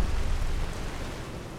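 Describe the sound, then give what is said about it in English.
Heavy rain in a video game, brought on by the Storm Call power, pours down in a steady, dense hiss with a deep low rumble underneath, fairly loud, continuous throughout with no voices. “Pardon me if the rain is really loud for a minute or two here.”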